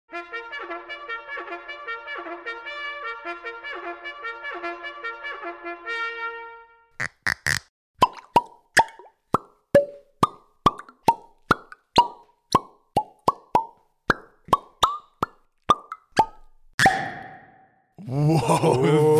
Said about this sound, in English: this is a 21 pop salute made of our 21 top whiskey bottle pops from the past 100 episodes